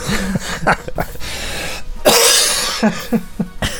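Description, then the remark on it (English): A loud fit of coughing: several harsh, raspy coughs in quick succession with a long breathy burst in the middle, mixed with strained, voiced wheezes and no speech. “Don't make me laugh, I'll just cough.”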